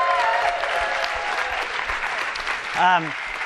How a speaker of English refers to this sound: First, let's thank Neptune. Can we give Neptune a big round of applause?